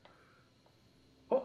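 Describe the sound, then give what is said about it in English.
A single sharp, fairly loud sneeze bursts out near the end, after a stretch of near silence with only faint background noise. “Bless you.”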